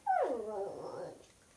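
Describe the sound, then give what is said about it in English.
A single high-pitched whine from a pet dog lying with its leg up waiting for tickles; it slides downward and trails off over about a second, with no talking around it. “we are here with a special guest today. This is Jake, our dog.”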